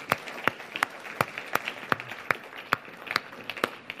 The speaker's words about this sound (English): Ladies and gentlemen, would you please give our volunteers a round of applause?